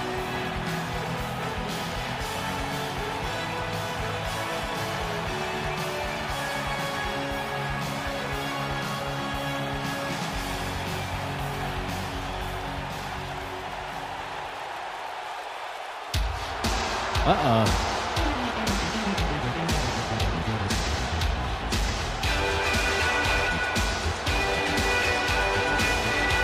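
The entrance theme song of wrestler Owen Hart, the King of Hearts, plays loud and steady, cuts out briefly partway through, then crashes back in with a sweeping, descending tone and a dense, driving mix.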